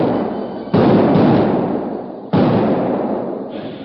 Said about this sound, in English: the men sank charges of blasting powder into speedily dug holes in the bank, which formed a juncture between the stream and the arroyo. Then a series of explosions rent the air.